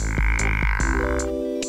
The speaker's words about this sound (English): Male pickerel frogs float in the water and call in choruses. And that call, well, I'm just gonna let you listen to it. I'm sorry, but I have to call it like I hear it. The pickerel frog's call sounds like a fart.